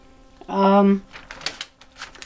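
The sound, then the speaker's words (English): A short hummed vocal tone, then a run of quick, crisp rustles and flicks as the last pages of a notebook are handled, uneven and fairly soft. “Sorry about the loud, it's probably loud paper noises.”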